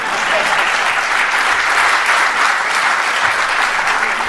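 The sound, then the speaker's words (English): An audience in Chicago applauds steadily in response to a housing policy statement, a dense, even wash of many hands clapping at a loud, sustained level for several seconds with no talking over it. “You can clap for that.”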